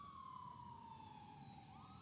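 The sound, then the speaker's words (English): A fire truck siren wails steadily at 9:30 in the morning, its pitch sliding slowly downward as it passes, over a low traffic rumble with no voices. “It's a fire truck passing by.”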